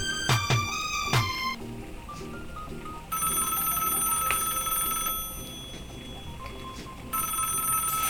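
A telephone bell rings loudly, starting with a few sharp clangs and then settling into long, shrill ringing bursts separated by a brief pause, with no one speaking.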